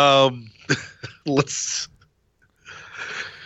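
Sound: coughing and throat clearing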